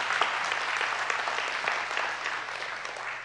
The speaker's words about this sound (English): Come on, let's give the Lord a hand clap.